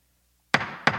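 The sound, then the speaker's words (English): Two sharp hammer-strike sound effects, signalling that something now begins, ring out after a moment of silence, the first loud and followed by a brief decaying ring, the second landing about a third of a second later. “hit the hammer that says now begin.”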